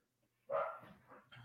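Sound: dog barking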